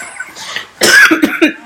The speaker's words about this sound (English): I just basically watch you cough up a lung.